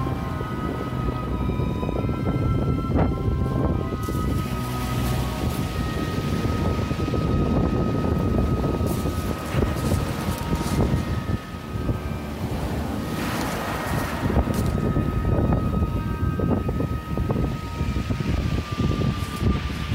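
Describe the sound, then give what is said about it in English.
Strong wind buffets the microphone on an open pebbly beach near the ruins of the West Pier on a cold, windy day with some sunshine, with surf rolling and washing in steadily underneath. Constant and loud, with no voices present. “It's a fairly cold and windy day here, but some bright sunshine coming through the clouds.”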